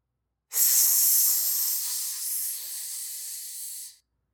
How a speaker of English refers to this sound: What's that sound? David asked. My whole body could feel that the hissing was behind us, and my antennae were already getting a sick, quivering feeling that they smelled something unpleasant.